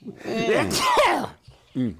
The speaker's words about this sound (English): Hang on a second. I got to sneeze.